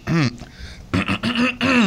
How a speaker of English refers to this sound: Well, I'm clearing my throat of all the phlegmy stuff.